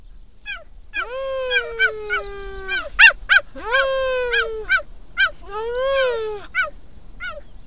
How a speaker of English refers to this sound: Unlike other big cats, the cheetah doesn't roar. It mews. The tender vocalization coincides with a gentle demeanor, incongruous to its speedy, bone-chilling prey pursuits.